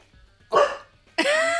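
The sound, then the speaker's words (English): A dog barks twice, two loud barks about half a second apart, the second one longer and cut off at the end, with no talking in between. “It looks like you're barking.”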